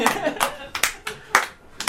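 Slow, evenly spaced hand claps, about five sharp bright smacks roughly every half second, sounding like a small, sparse round of applause rather than a full crowd.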